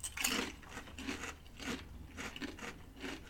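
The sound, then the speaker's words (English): Someone bites into a hearty, skin-on kettle chip and crunches it repeatedly, a series of sharp, crackly bursts about every half second, with no talking. “I mean, solid kettle chip as always.”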